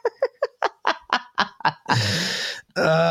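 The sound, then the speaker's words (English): Loud barking from dogs in a quick run of about eight sharp yelps, breaking into two longer, harsh, raspy bursts of noise at the end. No one speaks. “Fucking dogs.”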